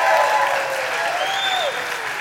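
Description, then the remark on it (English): A crowd applauds steadily for three girls, with scattered cheers and whoops rising above the clapping, a dense, loud wash of sound sustained throughout. “Can you just cheer for them one more time?”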